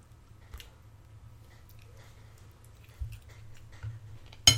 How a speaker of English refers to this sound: Boiling water. I was like, that's a kind of familiar sound. What is it?